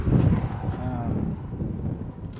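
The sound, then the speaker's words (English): Heavy prairie wind blowing across the plains by a row of mailboxes in the town of Woodrow buffets a binaural headphone microphone in rumbling low-frequency gusts, a steady loud roar with no pauses, blustery throughout. “I'm wearing my new binaural headphone/microphone combo, trying to capture sound of the place, but the wind hollers across the plains so strongly that it bleeds my microphone dry.”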